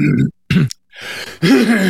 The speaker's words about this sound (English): Sorry, I'm a little mucusy, so I'm going to be clearing my throat through this